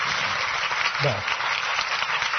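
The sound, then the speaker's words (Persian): Steady applause from an audience fills the whole stretch, a dense, even wash of many hands clapping at once, with a brief voice rising faintly beneath it partway through. “تشویق تماشاگران.”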